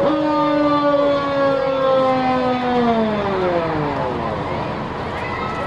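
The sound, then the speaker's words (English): The siren of a Hamburg Township Fire Department truck, engine 11, wails loudly in a steady high tone, then slowly winds down, its pitch sliding lower over several seconds amid faint background noise. “Now, I love the spinner on the front of this fire truck.”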